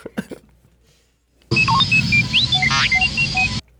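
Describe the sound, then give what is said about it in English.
The droid R2-D2 beeps and whistles in a rapid burst of loud electronic chirps, warbling sweeps and short tones, after a couple of brief soft noises. “That is classic, That's classic D2.”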